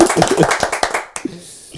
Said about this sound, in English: Right, I forgot that we clapped.